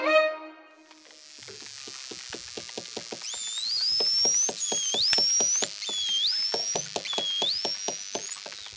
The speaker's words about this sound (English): And finally, those noises you've just heard were made by bottlenose dolphins. They communicate with each other using a wide range of squeaks, chirps, screams, grunts, and whistles.